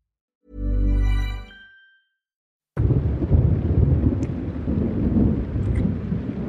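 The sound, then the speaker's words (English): A deep, booming rumble of thunder rolls in and fades, then after a short silence a steady, dense roar of storm noise, like heavy rain with low rumbling, fills the rest. “Storm's coming.”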